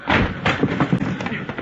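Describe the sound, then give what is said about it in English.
A chamber door bursts open with a heavy thud as swelling material forces it and metal packing strips burst, followed by a rough, rumbling clatter and several low impacts in quick succession. “Hey, it works, sir. The door's open.”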